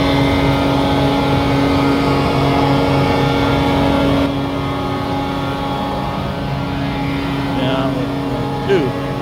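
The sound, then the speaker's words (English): A loud, steady engine drone with strong low harmonic hum runs throughout from a vacuum truck working at construction outside on a foggy morning, easing slightly partway through, with faint voices underneath. “there's some construction going on outside. Noise, some inconvenience. Quite noisy.”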